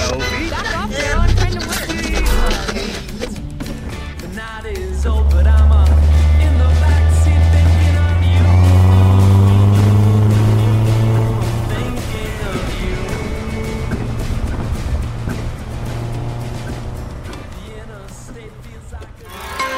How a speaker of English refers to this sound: And with that, the mysterious stranger climbs into the front seat, turns on the car, and turns off the lights.